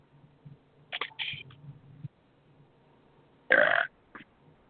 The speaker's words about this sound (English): Damn. Bless you. Yes, all the way from Texas. Yes. Thank you very much. You heard it here. You heard it here first, folks. A Texas-sized belch.